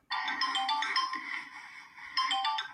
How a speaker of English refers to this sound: Here's number two. I will give you two options for this because two people have this ringtone.